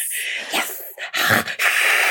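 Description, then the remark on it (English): A person imitates a cat's hiss with several sharp, breathy bursts of air, loud and high-pitched, ending in one long sustained hiss. “That was me kissing like a cat.”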